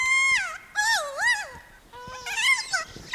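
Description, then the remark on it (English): A captive kea's warbling play call: bright, rising and falling whistled trills with rich harmonics, repeated in several wavering phrases over about three seconds, loud and clear with no talking. “They recorded captive kias making those warbling calls, then traveled to New Zealand where they played the recordings for wild kias.”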